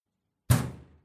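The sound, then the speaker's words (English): A single heavy bang against a kitchen wall, a deep, booming thud that rings out and fades over about half a second, with silence before it and no voices. “The banging in the kitchen wall.”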